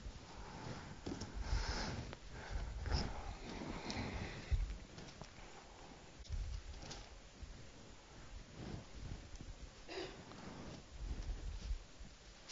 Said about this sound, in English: I hear pages turning. One of my favorite sounds is Bible pages turning. It's a really nice sound.